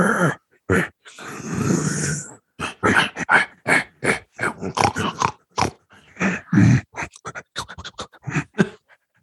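A rapid, irregular run of short grunting snorts and growly squeals, fairly loud, like little pug puppies fighting, with brief gaps between bursts and no talking.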